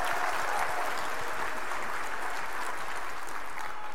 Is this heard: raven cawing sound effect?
no